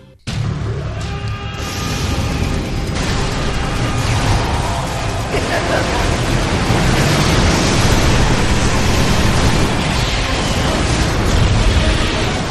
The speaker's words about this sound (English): Yay, it's a bunch of static and noise.